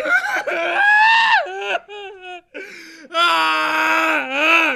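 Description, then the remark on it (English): A man screams at full volume, piercing, in a long sustained yell, then a few shorter wavering cries, and finally another long, drawn-out scream, in a dimly lit, messy bedroom with a television playing. “Until a deafening male scream is heard.”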